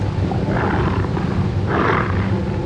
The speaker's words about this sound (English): Did you hear that? Oh, I heard that. It's dogs! It's the blood! They've been drawn by the blood!